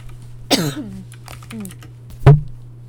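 Scattered clicks and taps from a computer keyboard being typed on while looking a person up, over a low steady hum, mixed with short wordless vocal sounds and a sharper thump near the end.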